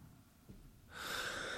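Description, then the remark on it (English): A breath rushes into the microphone as a steady, airy hiss that starts partway through after a near-silent moment and holds to the end. No one speaks. “I hope my breathing isn't weird.”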